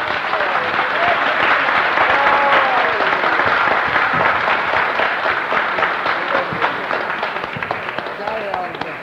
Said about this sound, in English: Let us start off by giving Jesus a hearty clap. Come on.